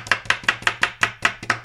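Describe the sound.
An improvised drum roll: a quick, steady run of sharp knocking taps, about five per second, each hit slightly doubled, played loudly on a hard surface with no voices.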